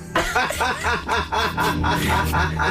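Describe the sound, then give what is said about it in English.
A person imitates a duck, letting out a quick run of about eight nasal, buzzy quacks in a steady rhythm, loudly. “You are absolutely great quack.”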